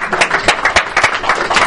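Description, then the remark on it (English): A crowd applauds steadily, a dense wash of many hands clapping at once with sharper individual claps popping through, fairly loud and sustained for the whole moment. “So give these guys a round of applause.”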